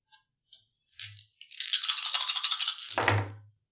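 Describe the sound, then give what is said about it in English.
A few sharp clicks lead into a steady clattering rattle of dice being shaken, ending in a solid tumble and thud as they land on a table, rolled for a healing test in a game. Fairly loud, no voices. “Sure, give yourself 2 extra dice for the healing test.”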